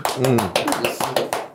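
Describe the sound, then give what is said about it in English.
A short round of applause, sharp claps arriving in a quick uneven rhythm, with people talking underneath. “And so, just a round of applause for our boy”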